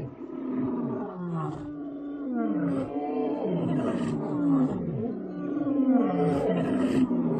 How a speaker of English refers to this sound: a lion's roar. Here, there's been some sort of kill, or they scavenged this.